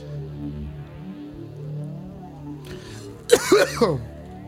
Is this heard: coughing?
yes